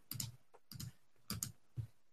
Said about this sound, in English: I'm typing something up that I probably shouldn't be typing.